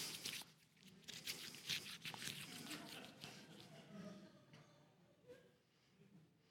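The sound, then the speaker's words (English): A sheet of paper is crumpled up, with dense crackling and crinkling bursts for the first few seconds, then thinning out into quieter, scattered rustles. “But you know, the thing is that I can crumble it up.”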